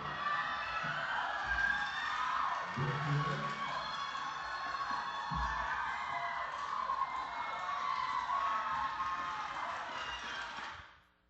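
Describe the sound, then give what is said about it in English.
A large crowd at a youth football game cheers and shouts continuously during a play by the quarterback, a dense wall of excited voices with a couple of dull thumps underneath, holding steady for about ten seconds before cutting off abruptly. “So I want you to watch this video and listen to the crowd.”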